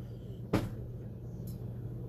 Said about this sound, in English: close the door, please.